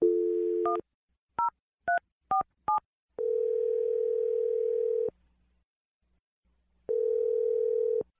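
A dial tone gives way to five quick touch-tone beeps as a phone number is keyed in for a call on a morning radio show, followed by two long, steady ringing tones separated by a pause of silence. No voices.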